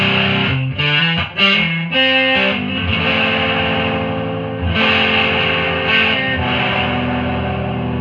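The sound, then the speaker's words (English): A loud, saturated electric guitar through an FZ1 fuzz pedal plays a few quick chord stabs, then lets a thick, buzzing chord ring out and sustain with no one talking. “I dig the tones of the FZ1.”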